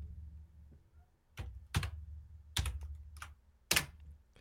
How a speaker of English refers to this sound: It sounds like you're typing on a coffin. It feels like I am.